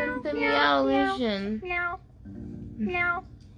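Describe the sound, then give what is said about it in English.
A person imitates cat meows with their voice: a long, wavering meow followed by two shorter ones, loud, with a steady low hum in the background. “We should call them meow, meow, meows.”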